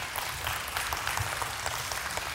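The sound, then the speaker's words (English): A crowd applauds steadily, a dense, even wash of many hands clapping with no breaks and no voices standing out, holding at a moderate level throughout. “I'm gonna give you somebody else to clap for in just a second.”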